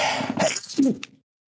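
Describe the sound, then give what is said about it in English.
A single sneeze, with a breathy, noisy buildup followed by a sharp voiced burst that trails off into a short hiss, then silence. “Don't bless you.”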